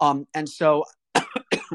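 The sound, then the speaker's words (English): Several harsh coughs in quick bursts: a few throaty, voiced hacks, then two sharp, breathy coughs after a brief pause, each one sudden and loud. “Still working on that cough there.”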